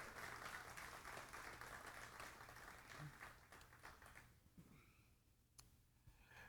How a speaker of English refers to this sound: Give Miss Oney a big round of applause, guys.